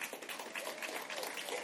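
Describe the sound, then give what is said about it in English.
A crowd applauds for the youth intern who makes the announcements, a steady, dense wash of many hands clapping at once, a continuous bright patter held at an even level throughout, with no voices standing out. “He does a great job. Give him applause.”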